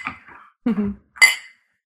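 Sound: glasses clinking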